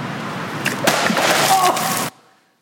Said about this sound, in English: This is what happens when you put potassium into water.